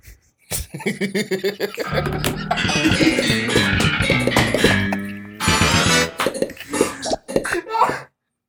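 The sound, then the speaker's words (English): Heavy, harsh coughing fits go on for several seconds, loud, with rough hacking bursts, a short break, then more coughing before it trails off. “Next day I'm coughing up a lung.”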